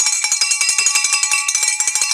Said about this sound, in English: Well, why are we ringing the bell? We're ringing the bell because mentioning the book,